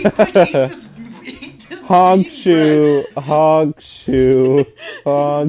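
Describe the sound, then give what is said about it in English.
A voice mimics cartoonish snoring: a few quick choppy bursts, then a series of drawn-out, buzzy, tonal snore sounds repeating in a steady rhythm with brief gaps between them. “Comical snoring.”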